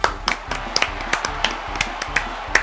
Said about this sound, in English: Let's give a big round of applause to ….